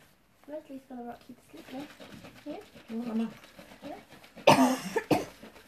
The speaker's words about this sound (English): No, how's the coronavirus? I promise it was just a cough.